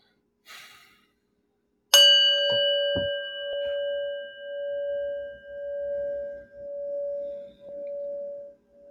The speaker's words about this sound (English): what we're going to do is we're going to ring a bell. When the bell rings, we're just going to breathe a little bit. And this is just to get us into that calm place.